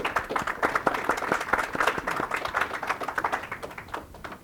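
A crowd claps steadily in tribute to a longtime ethics teacher, a dense patter of many hands, sustained throughout and tapering slightly toward the end, with no talking.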